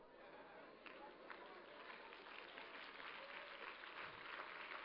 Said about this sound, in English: Now tell them, I hope you ain't too cute to clap.